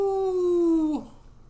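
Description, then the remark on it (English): A person imitates a wolf howl after picking the NC State Wolfpack in a football game prediction: one loud, sustained, tonal wail held for about a second, sliding slightly downward before cutting off abruptly, with no other voices or sounds around it. “Dude, that's a werewolf. It's a wolf, ain't it?”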